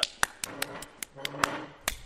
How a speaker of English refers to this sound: Make sure you get those clap noises in there.